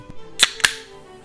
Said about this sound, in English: So I just cracked open a Half Dome. It's a California wheat beer from Tioga Sequoia Brewing Co. So it's a wheat beer brewed with peaches, you know, 4.7 ABV.